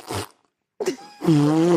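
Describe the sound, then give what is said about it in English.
A voice imitates a queef: a short sputtering burst, a pause, then a breathy puff that turns into a sustained, buzzy, slightly rising tone, fairly loud. “Queefing sounds like a fart. It do, but. Queefing never sounds like. It's not like that. Queefing be like this.”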